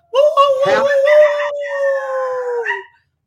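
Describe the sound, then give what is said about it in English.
A person imitates a howl at the moon for National Howling at the Moon Day: one loud, sustained wavering cry lasting about three seconds, its pitch sliding slowly downward before cutting off. “So please, you have to howl at the moon today.”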